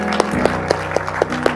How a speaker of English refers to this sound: Can y'all give God a hand clap of praise?